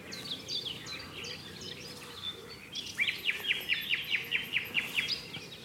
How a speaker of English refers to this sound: I can hear a nightingale further on, which I shall go and try and find.